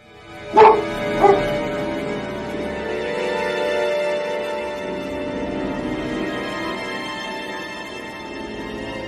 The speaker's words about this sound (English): Barking outside.